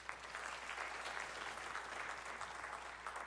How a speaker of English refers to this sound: I would like for you to share with me by clapping if you know someone, your family or a friend, or you yourself have served in the military. Will you clap, please?